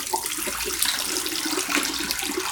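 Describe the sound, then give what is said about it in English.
A steady stream of liquid gently poured out of a tank, a continuous splashing hiss that holds at an even level for a couple of seconds, with no voices over it. “We have 10 seconds left, so yes, let's just gently pour out. Very gently.”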